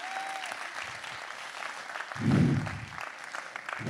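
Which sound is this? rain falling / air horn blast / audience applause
audience applause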